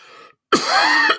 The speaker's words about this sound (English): Excuse me. Sorry for coughing. Talking too much.